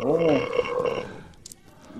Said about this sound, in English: Now, that just sounded like a massive burp.